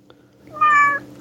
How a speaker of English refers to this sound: Kitty. Sorry. Oh, you need to see my new kitty. She demanded snuggles.